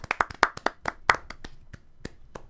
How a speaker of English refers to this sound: Claps all around.